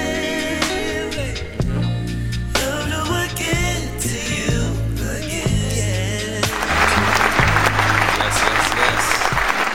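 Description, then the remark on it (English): A stretch of music with a steady bass line gives way to dense, sustained hand clapping that keeps going loudly until the end, with the music still faintly underneath. “That was the longest hand clap ever.”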